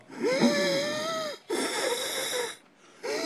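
Heavy, rasping wheezy breaths, loud: two long strained inhales or exhales with a whistling tone, a brief pause, then a third breath starting.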